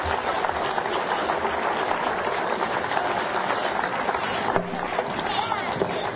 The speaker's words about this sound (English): Actually, can you clap for the whole class? These guys are awesome.